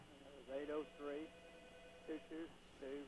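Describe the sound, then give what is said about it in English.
A faint, muffled voice of a caller from Clover comes through a telephone line on a radio call-in program in a few short bursts separated by pauses, thin and tinny over a steady low hiss, too quiet to make out. “Wait a minute, I can barely hear you.”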